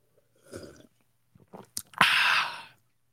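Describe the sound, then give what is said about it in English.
Mouth noises of someone sipping a drink: a soft slurp, a few wet clicks and gulps, then a loud breathy exhale of satisfaction. No one speaks. “Sip of the day came early on a Friday.”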